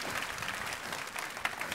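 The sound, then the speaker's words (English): A crowd gives the tech crew a round of applause, clapping steadily in a dense, continuous patter of many hands, holding an even loudness throughout with no voices standing out. “Maybe we give our tech crew a round of applause.”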